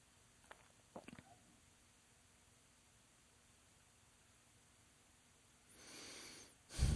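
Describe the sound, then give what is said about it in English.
Near-silence with a couple of faint clicks, then a refrigerator compressor kicks on near the end, a sudden steady whirring hiss that swells louder in its final moments. No one speaks. “It was like dead silent in here and my refrigerator just kicked on.”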